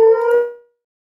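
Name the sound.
dogs howling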